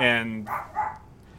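A dog named Edward barks: one longer, tonal bark followed by two quicker, sharper barks in rapid succession, fairly loud and then fading off.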